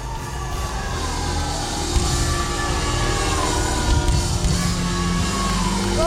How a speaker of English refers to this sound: When I lift my voice and shout, something happens, hallelujah. Come on, shout to God with a voice of triumph. Come on, give your shouts.